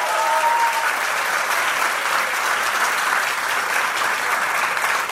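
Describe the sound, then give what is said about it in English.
A crowd bursts into sustained, dense applause, many hands clapping steadily at an even loudness for several seconds, with a faint cheer or whistle near the start. “Please, another round of applause”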